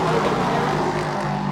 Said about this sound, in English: So just behind us is the start-finish straight. The cars are going flat out.